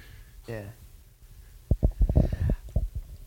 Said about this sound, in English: Oh, 1 second. Oops. Is he sleeping? Yeah, yeah, he's snoring.